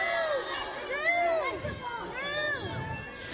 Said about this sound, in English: Guys, this is exactly what I thought was going to happen. Some of you are yelling fruit, some are yelling vegetable.